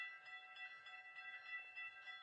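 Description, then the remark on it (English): Faint railroad ambience as someone walks across train tracks: a steady, bell-like metallic ringing pulses at a quick, regular rhythm, with no voices. “Yeah, I'm walking across the train tracks, all right?”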